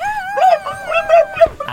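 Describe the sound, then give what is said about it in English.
A puppy whimpers in high, wavering whines broken by a few short yips, fairly loud, with no talking over it. “And your sibling is being smothered in a big puppy.”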